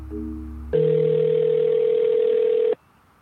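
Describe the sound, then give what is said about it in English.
A steady, unbroken telephone dial tone hums loudly for about two seconds while a phone call is being placed, preceded by a softer low buzz, then cuts off abruptly; no one speaks. “why don't we try to phone that number?”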